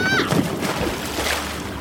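A brief cry rings out, then a heavy splash as a person is tipped from a boat into a warm lake, followed by continuous sloshing and churning, fairly loud throughout.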